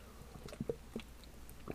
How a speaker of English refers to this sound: take a sip of my water here.